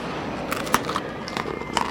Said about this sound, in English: I'm going to take a bite of the toast, and I'm going to come down.